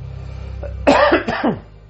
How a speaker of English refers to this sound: Even my coughs in between.